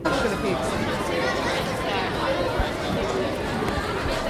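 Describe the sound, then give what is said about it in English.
Dense crowd chatter at the Royal Melbourne Show, an agricultural show, a steady, loud wash of overlapping voices with no single speaker standing out, continuous throughout. “On this episode, we're visiting the Royal Melbourne Show, where we find free stuff, educational experiences, good times, and what could prove to be the holy grail of food groups.”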